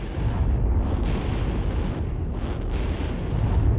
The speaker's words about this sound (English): they were in the process of just pulling onto the front verge when the power gel detonated.